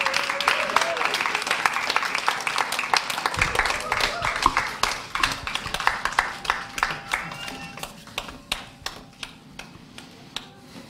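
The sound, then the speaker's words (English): A church audience applauds parents called forward for their children's dedication, dense clapping at first that gradually thins out into scattered individual claps toward the end, with a faint murmur of voices underneath. “Keep clapping. Gotta keep clapping.”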